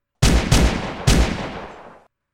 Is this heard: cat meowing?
no